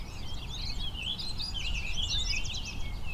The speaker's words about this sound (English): Yellow warbler.